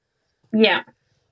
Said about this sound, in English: Pardon me. I'm sorry. I've got this horrible cough and it's like, I'm on the end of what I was feeling like yesterday.